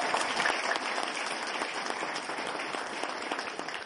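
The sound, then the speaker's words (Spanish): An audience at a training session claps steadily for about four seconds, a dense, even wash of many hands at moderate loudness with no voices over it. “Un aplauso.”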